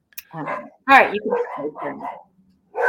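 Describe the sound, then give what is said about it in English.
Puppies yap and yip in quick, high-pitched bursts, several overlapping barks, with a short pause before another yelp at the end. “Or maybe puppies. They make it better.”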